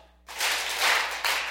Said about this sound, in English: Just making sure. Making sure we can clap our hands.